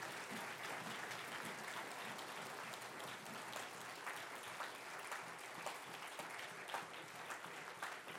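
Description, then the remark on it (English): An audience applauds steadily to thank guests for coming, a dense, even wash of many hands clapping at once that holds at a constant loud level throughout, with no voices rising above it. “Go ahead and give another hand.”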